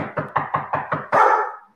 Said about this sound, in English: It's a 2-year-old sheepadoodle. And it barks at everything. It barks at everything. Every sound, like, watch.